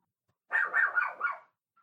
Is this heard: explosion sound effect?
no